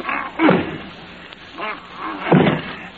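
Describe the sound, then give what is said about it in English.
A stuck closet door being forced, with three uneven bursts of thumping and rattling as it's shoved against its frame, separated by brief quieter pauses. “I'm going to try this door again.”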